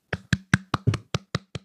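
Hand clapping after a song: about eight sharp, evenly spaced claps in a quick steady rhythm, each a crisp slap with a short decay, with no voices over them.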